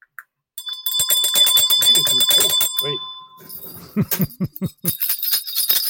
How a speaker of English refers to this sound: a ringy ding of that bell